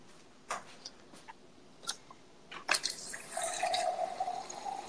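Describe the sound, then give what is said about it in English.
A few quiet clicks and drips, then water is poured into a glass for children to drink, a steady trickling stream that continues to the end. Moderately quiet, with no talking. “Look at how domesticated I am. Getting my kids some water.”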